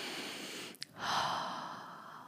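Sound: deep breath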